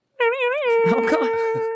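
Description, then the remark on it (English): A voice imitates a werewolf howl: a loud, sustained, wavering tone that settles into a long steady pitch, while other voices chatter and laugh over its second half. “Especially when you were talking about werewolves wielding garlic baguettes. At the OK Corral. And then as they come out of the saloon, it goes...”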